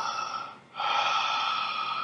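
Loud, close breathing right into the microphone: a short breath, a brief pause, then a long, harsh exhale of rushing air. No one speaks.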